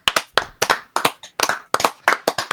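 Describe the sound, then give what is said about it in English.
A short round of hands clapping to close out a show, crisp sharp claps in a quick, slightly uneven rhythm, as if a few people clap together for a couple of seconds, with no talking. “Let's clap it out.”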